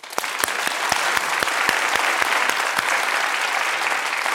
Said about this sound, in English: I feel like everyone in this room just clapped.